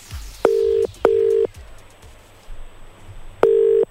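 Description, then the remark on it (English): A phone dials out to return a missed call, with three steady electronic ringing tones: two in quick succession, then a pause before the third. Each is clear and fairly loud, with no voices. “Let's call him back.”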